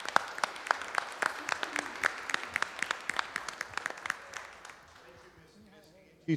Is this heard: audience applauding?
yes